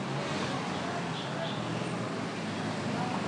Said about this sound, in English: Just a few cars. Love their tooting here.